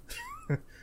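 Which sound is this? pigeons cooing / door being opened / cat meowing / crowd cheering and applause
cat meowing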